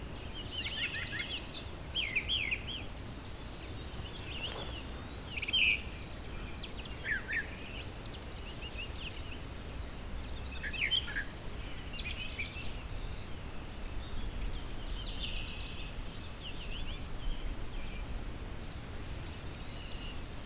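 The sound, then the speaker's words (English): A mockingbird or brown thrasher sings a run of varied, bright phrases in short bursts every second or two over a steady low outdoor rumble, with no talking. “Telling mockingbird and brown thrasher apart by ear takes a while to get to understand the nuances of the difference between them.”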